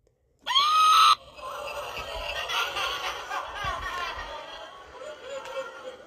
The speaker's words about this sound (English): I need to label that button because I'm always going for the laugh, but I get the scream button that I push anyway.